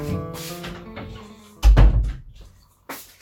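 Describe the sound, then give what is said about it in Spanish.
A door shuts with a heavy, low thump that stands out loudly, preceded by a stretch of murmured voices and followed by quieter rustling. “cierra la puerta.”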